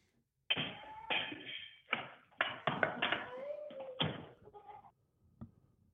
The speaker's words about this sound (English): Hold on one second. I'm just closing this door. Okay. All right. Close the door.